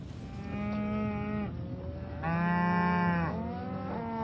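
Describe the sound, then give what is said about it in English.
Cattle moo loudly on Roger Hauser's family cattle farm in Page County, about 90 miles southwest of Washington, D.C., two long drawn-out bellows followed by a shorter, rising call, with no one speaking. “He raises cattle about 90 miles southwest of Washington, D.C.”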